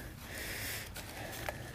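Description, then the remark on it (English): A dog named Doug sniffs at a bag of trash beside a road while walking up a hill, in soft, breathy bursts of rapid snuffling, with a couple of sharper puffs toward the end over steady outdoor background noise. “You don't need to sniff every piece of trash there, Doug.”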